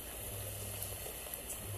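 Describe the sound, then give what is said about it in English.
Steady rain patters down on a nature trail in a dense, continuous hiss, soft and even throughout, with a faint low rumble underneath and no voices. “You can hear the sound of raining.”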